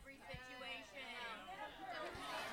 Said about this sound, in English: So it's interesting to hear the crowd here because there's no middle on this subject.